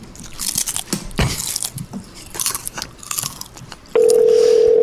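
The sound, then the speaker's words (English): Loud crunching and chewing of potato chips for about four seconds, irregular crackly bites, then it gives way abruptly to a steady, continuous telephone-like tone. “As sounds of chips echo through the live cast.”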